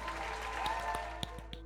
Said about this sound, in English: So nice. Kudos to that. Applause.